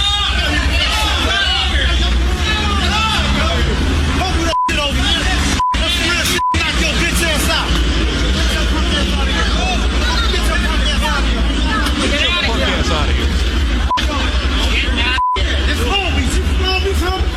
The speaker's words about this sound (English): So this is, the guys are looting, and you hear people around, the crowd that's yelling, stop it, right?